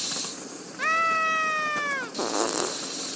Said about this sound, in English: So the Chamber of Farts has another victim, eh? Don't be afraid. There aren't any ghouls here. Only farts!